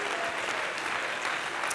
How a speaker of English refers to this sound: Let's stand to our feet, if you will. Clap your hands to the Lord and give some praise to the King.